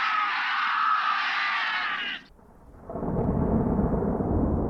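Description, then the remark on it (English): A thunderstorm: a steady hiss of heavy rain, a brief lull, then a deep, loud rumble of thunder rolling in and filling the low end. No one speaks. “We start, as all good monster movies do, with a thunderstorm.”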